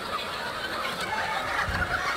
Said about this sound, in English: We hear your chick.